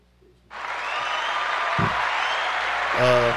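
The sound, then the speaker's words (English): A burst of canned applause from a soundboard clap button switches on abruptly and holds steady as a dense, even wash of clapping, with a brief low thump partway through and a voice cutting in near the end. “Which one the clap button, man?”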